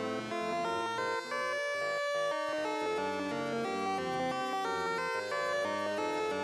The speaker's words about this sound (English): And then I have the triangle wave coming out into the Motormatic channel 1, and I've got that being modulated by the Maths.